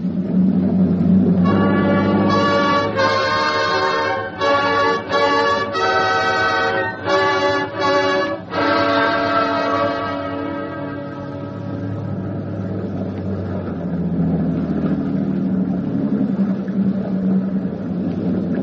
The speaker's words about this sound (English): That's our ship. Full ahead, all engines.